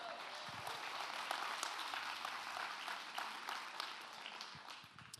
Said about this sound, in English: Amazing worship team. Come on, can we give them some applause? Fantastic job.